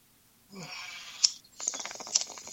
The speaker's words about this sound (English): Oh, yeah, goat. Oh.